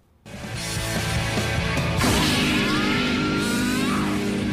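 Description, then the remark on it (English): A guitar is smashed with a loud crash, its strings ringing out in a thick wash of reverb. A second heavy hit about two seconds later swells the dense, noisy drone. “It's just a guitar being smashed into something, and just a ton of reverb.”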